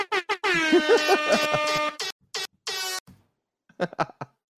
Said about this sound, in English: Oh man! You heard my air horn? Yeah. Yeah. I put mine on.